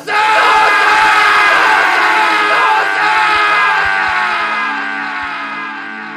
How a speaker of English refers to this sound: I screamed into the chasm.